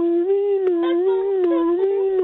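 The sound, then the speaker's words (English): A voice imitating an ambulance siren passing by, as a sound effect for a scene: one long, steady wailing tone held throughout, with gentle rises and dips in pitch and no words spoken. “Okay, can we have very, very, very, very quietly in the background, can we have an ambulance passing by, please?”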